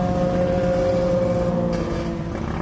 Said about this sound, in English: Where are all these people on motorcycles coming? There's like 20 people on motorcycles. That's ridiculous. All of a sudden.